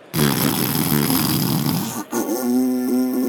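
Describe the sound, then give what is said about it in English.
A raspy lip buzz made with pursed lips, like blowing into an elk call without its reed, sounds loud and continuous for about two seconds, breaks briefly, then resumes as a steadier, more tonal buzz. “As you purse your lips together, that buzz of that”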